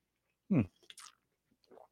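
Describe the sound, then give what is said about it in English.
A quiet sip of hot coffee: a short airy slurp followed by soft mouth and swallowing noises, with a brief low hum just before it. “Coffee is the best juice.”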